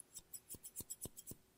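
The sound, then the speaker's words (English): A rapid, steady run of about nine crisp scissor snips, each a short metallic cut, fairly quiet with no talking, made with a couple of different pairs of scissors. “I have a couple of different scissors with me today.”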